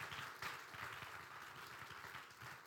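audience clapping hands

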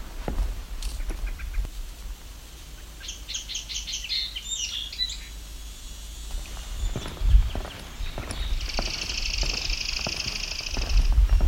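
chipping sparrow song

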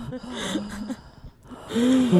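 audible breathing

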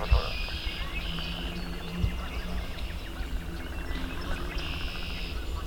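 red-winged blackbird song

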